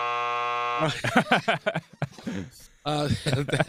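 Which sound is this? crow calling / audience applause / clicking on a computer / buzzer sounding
buzzer sounding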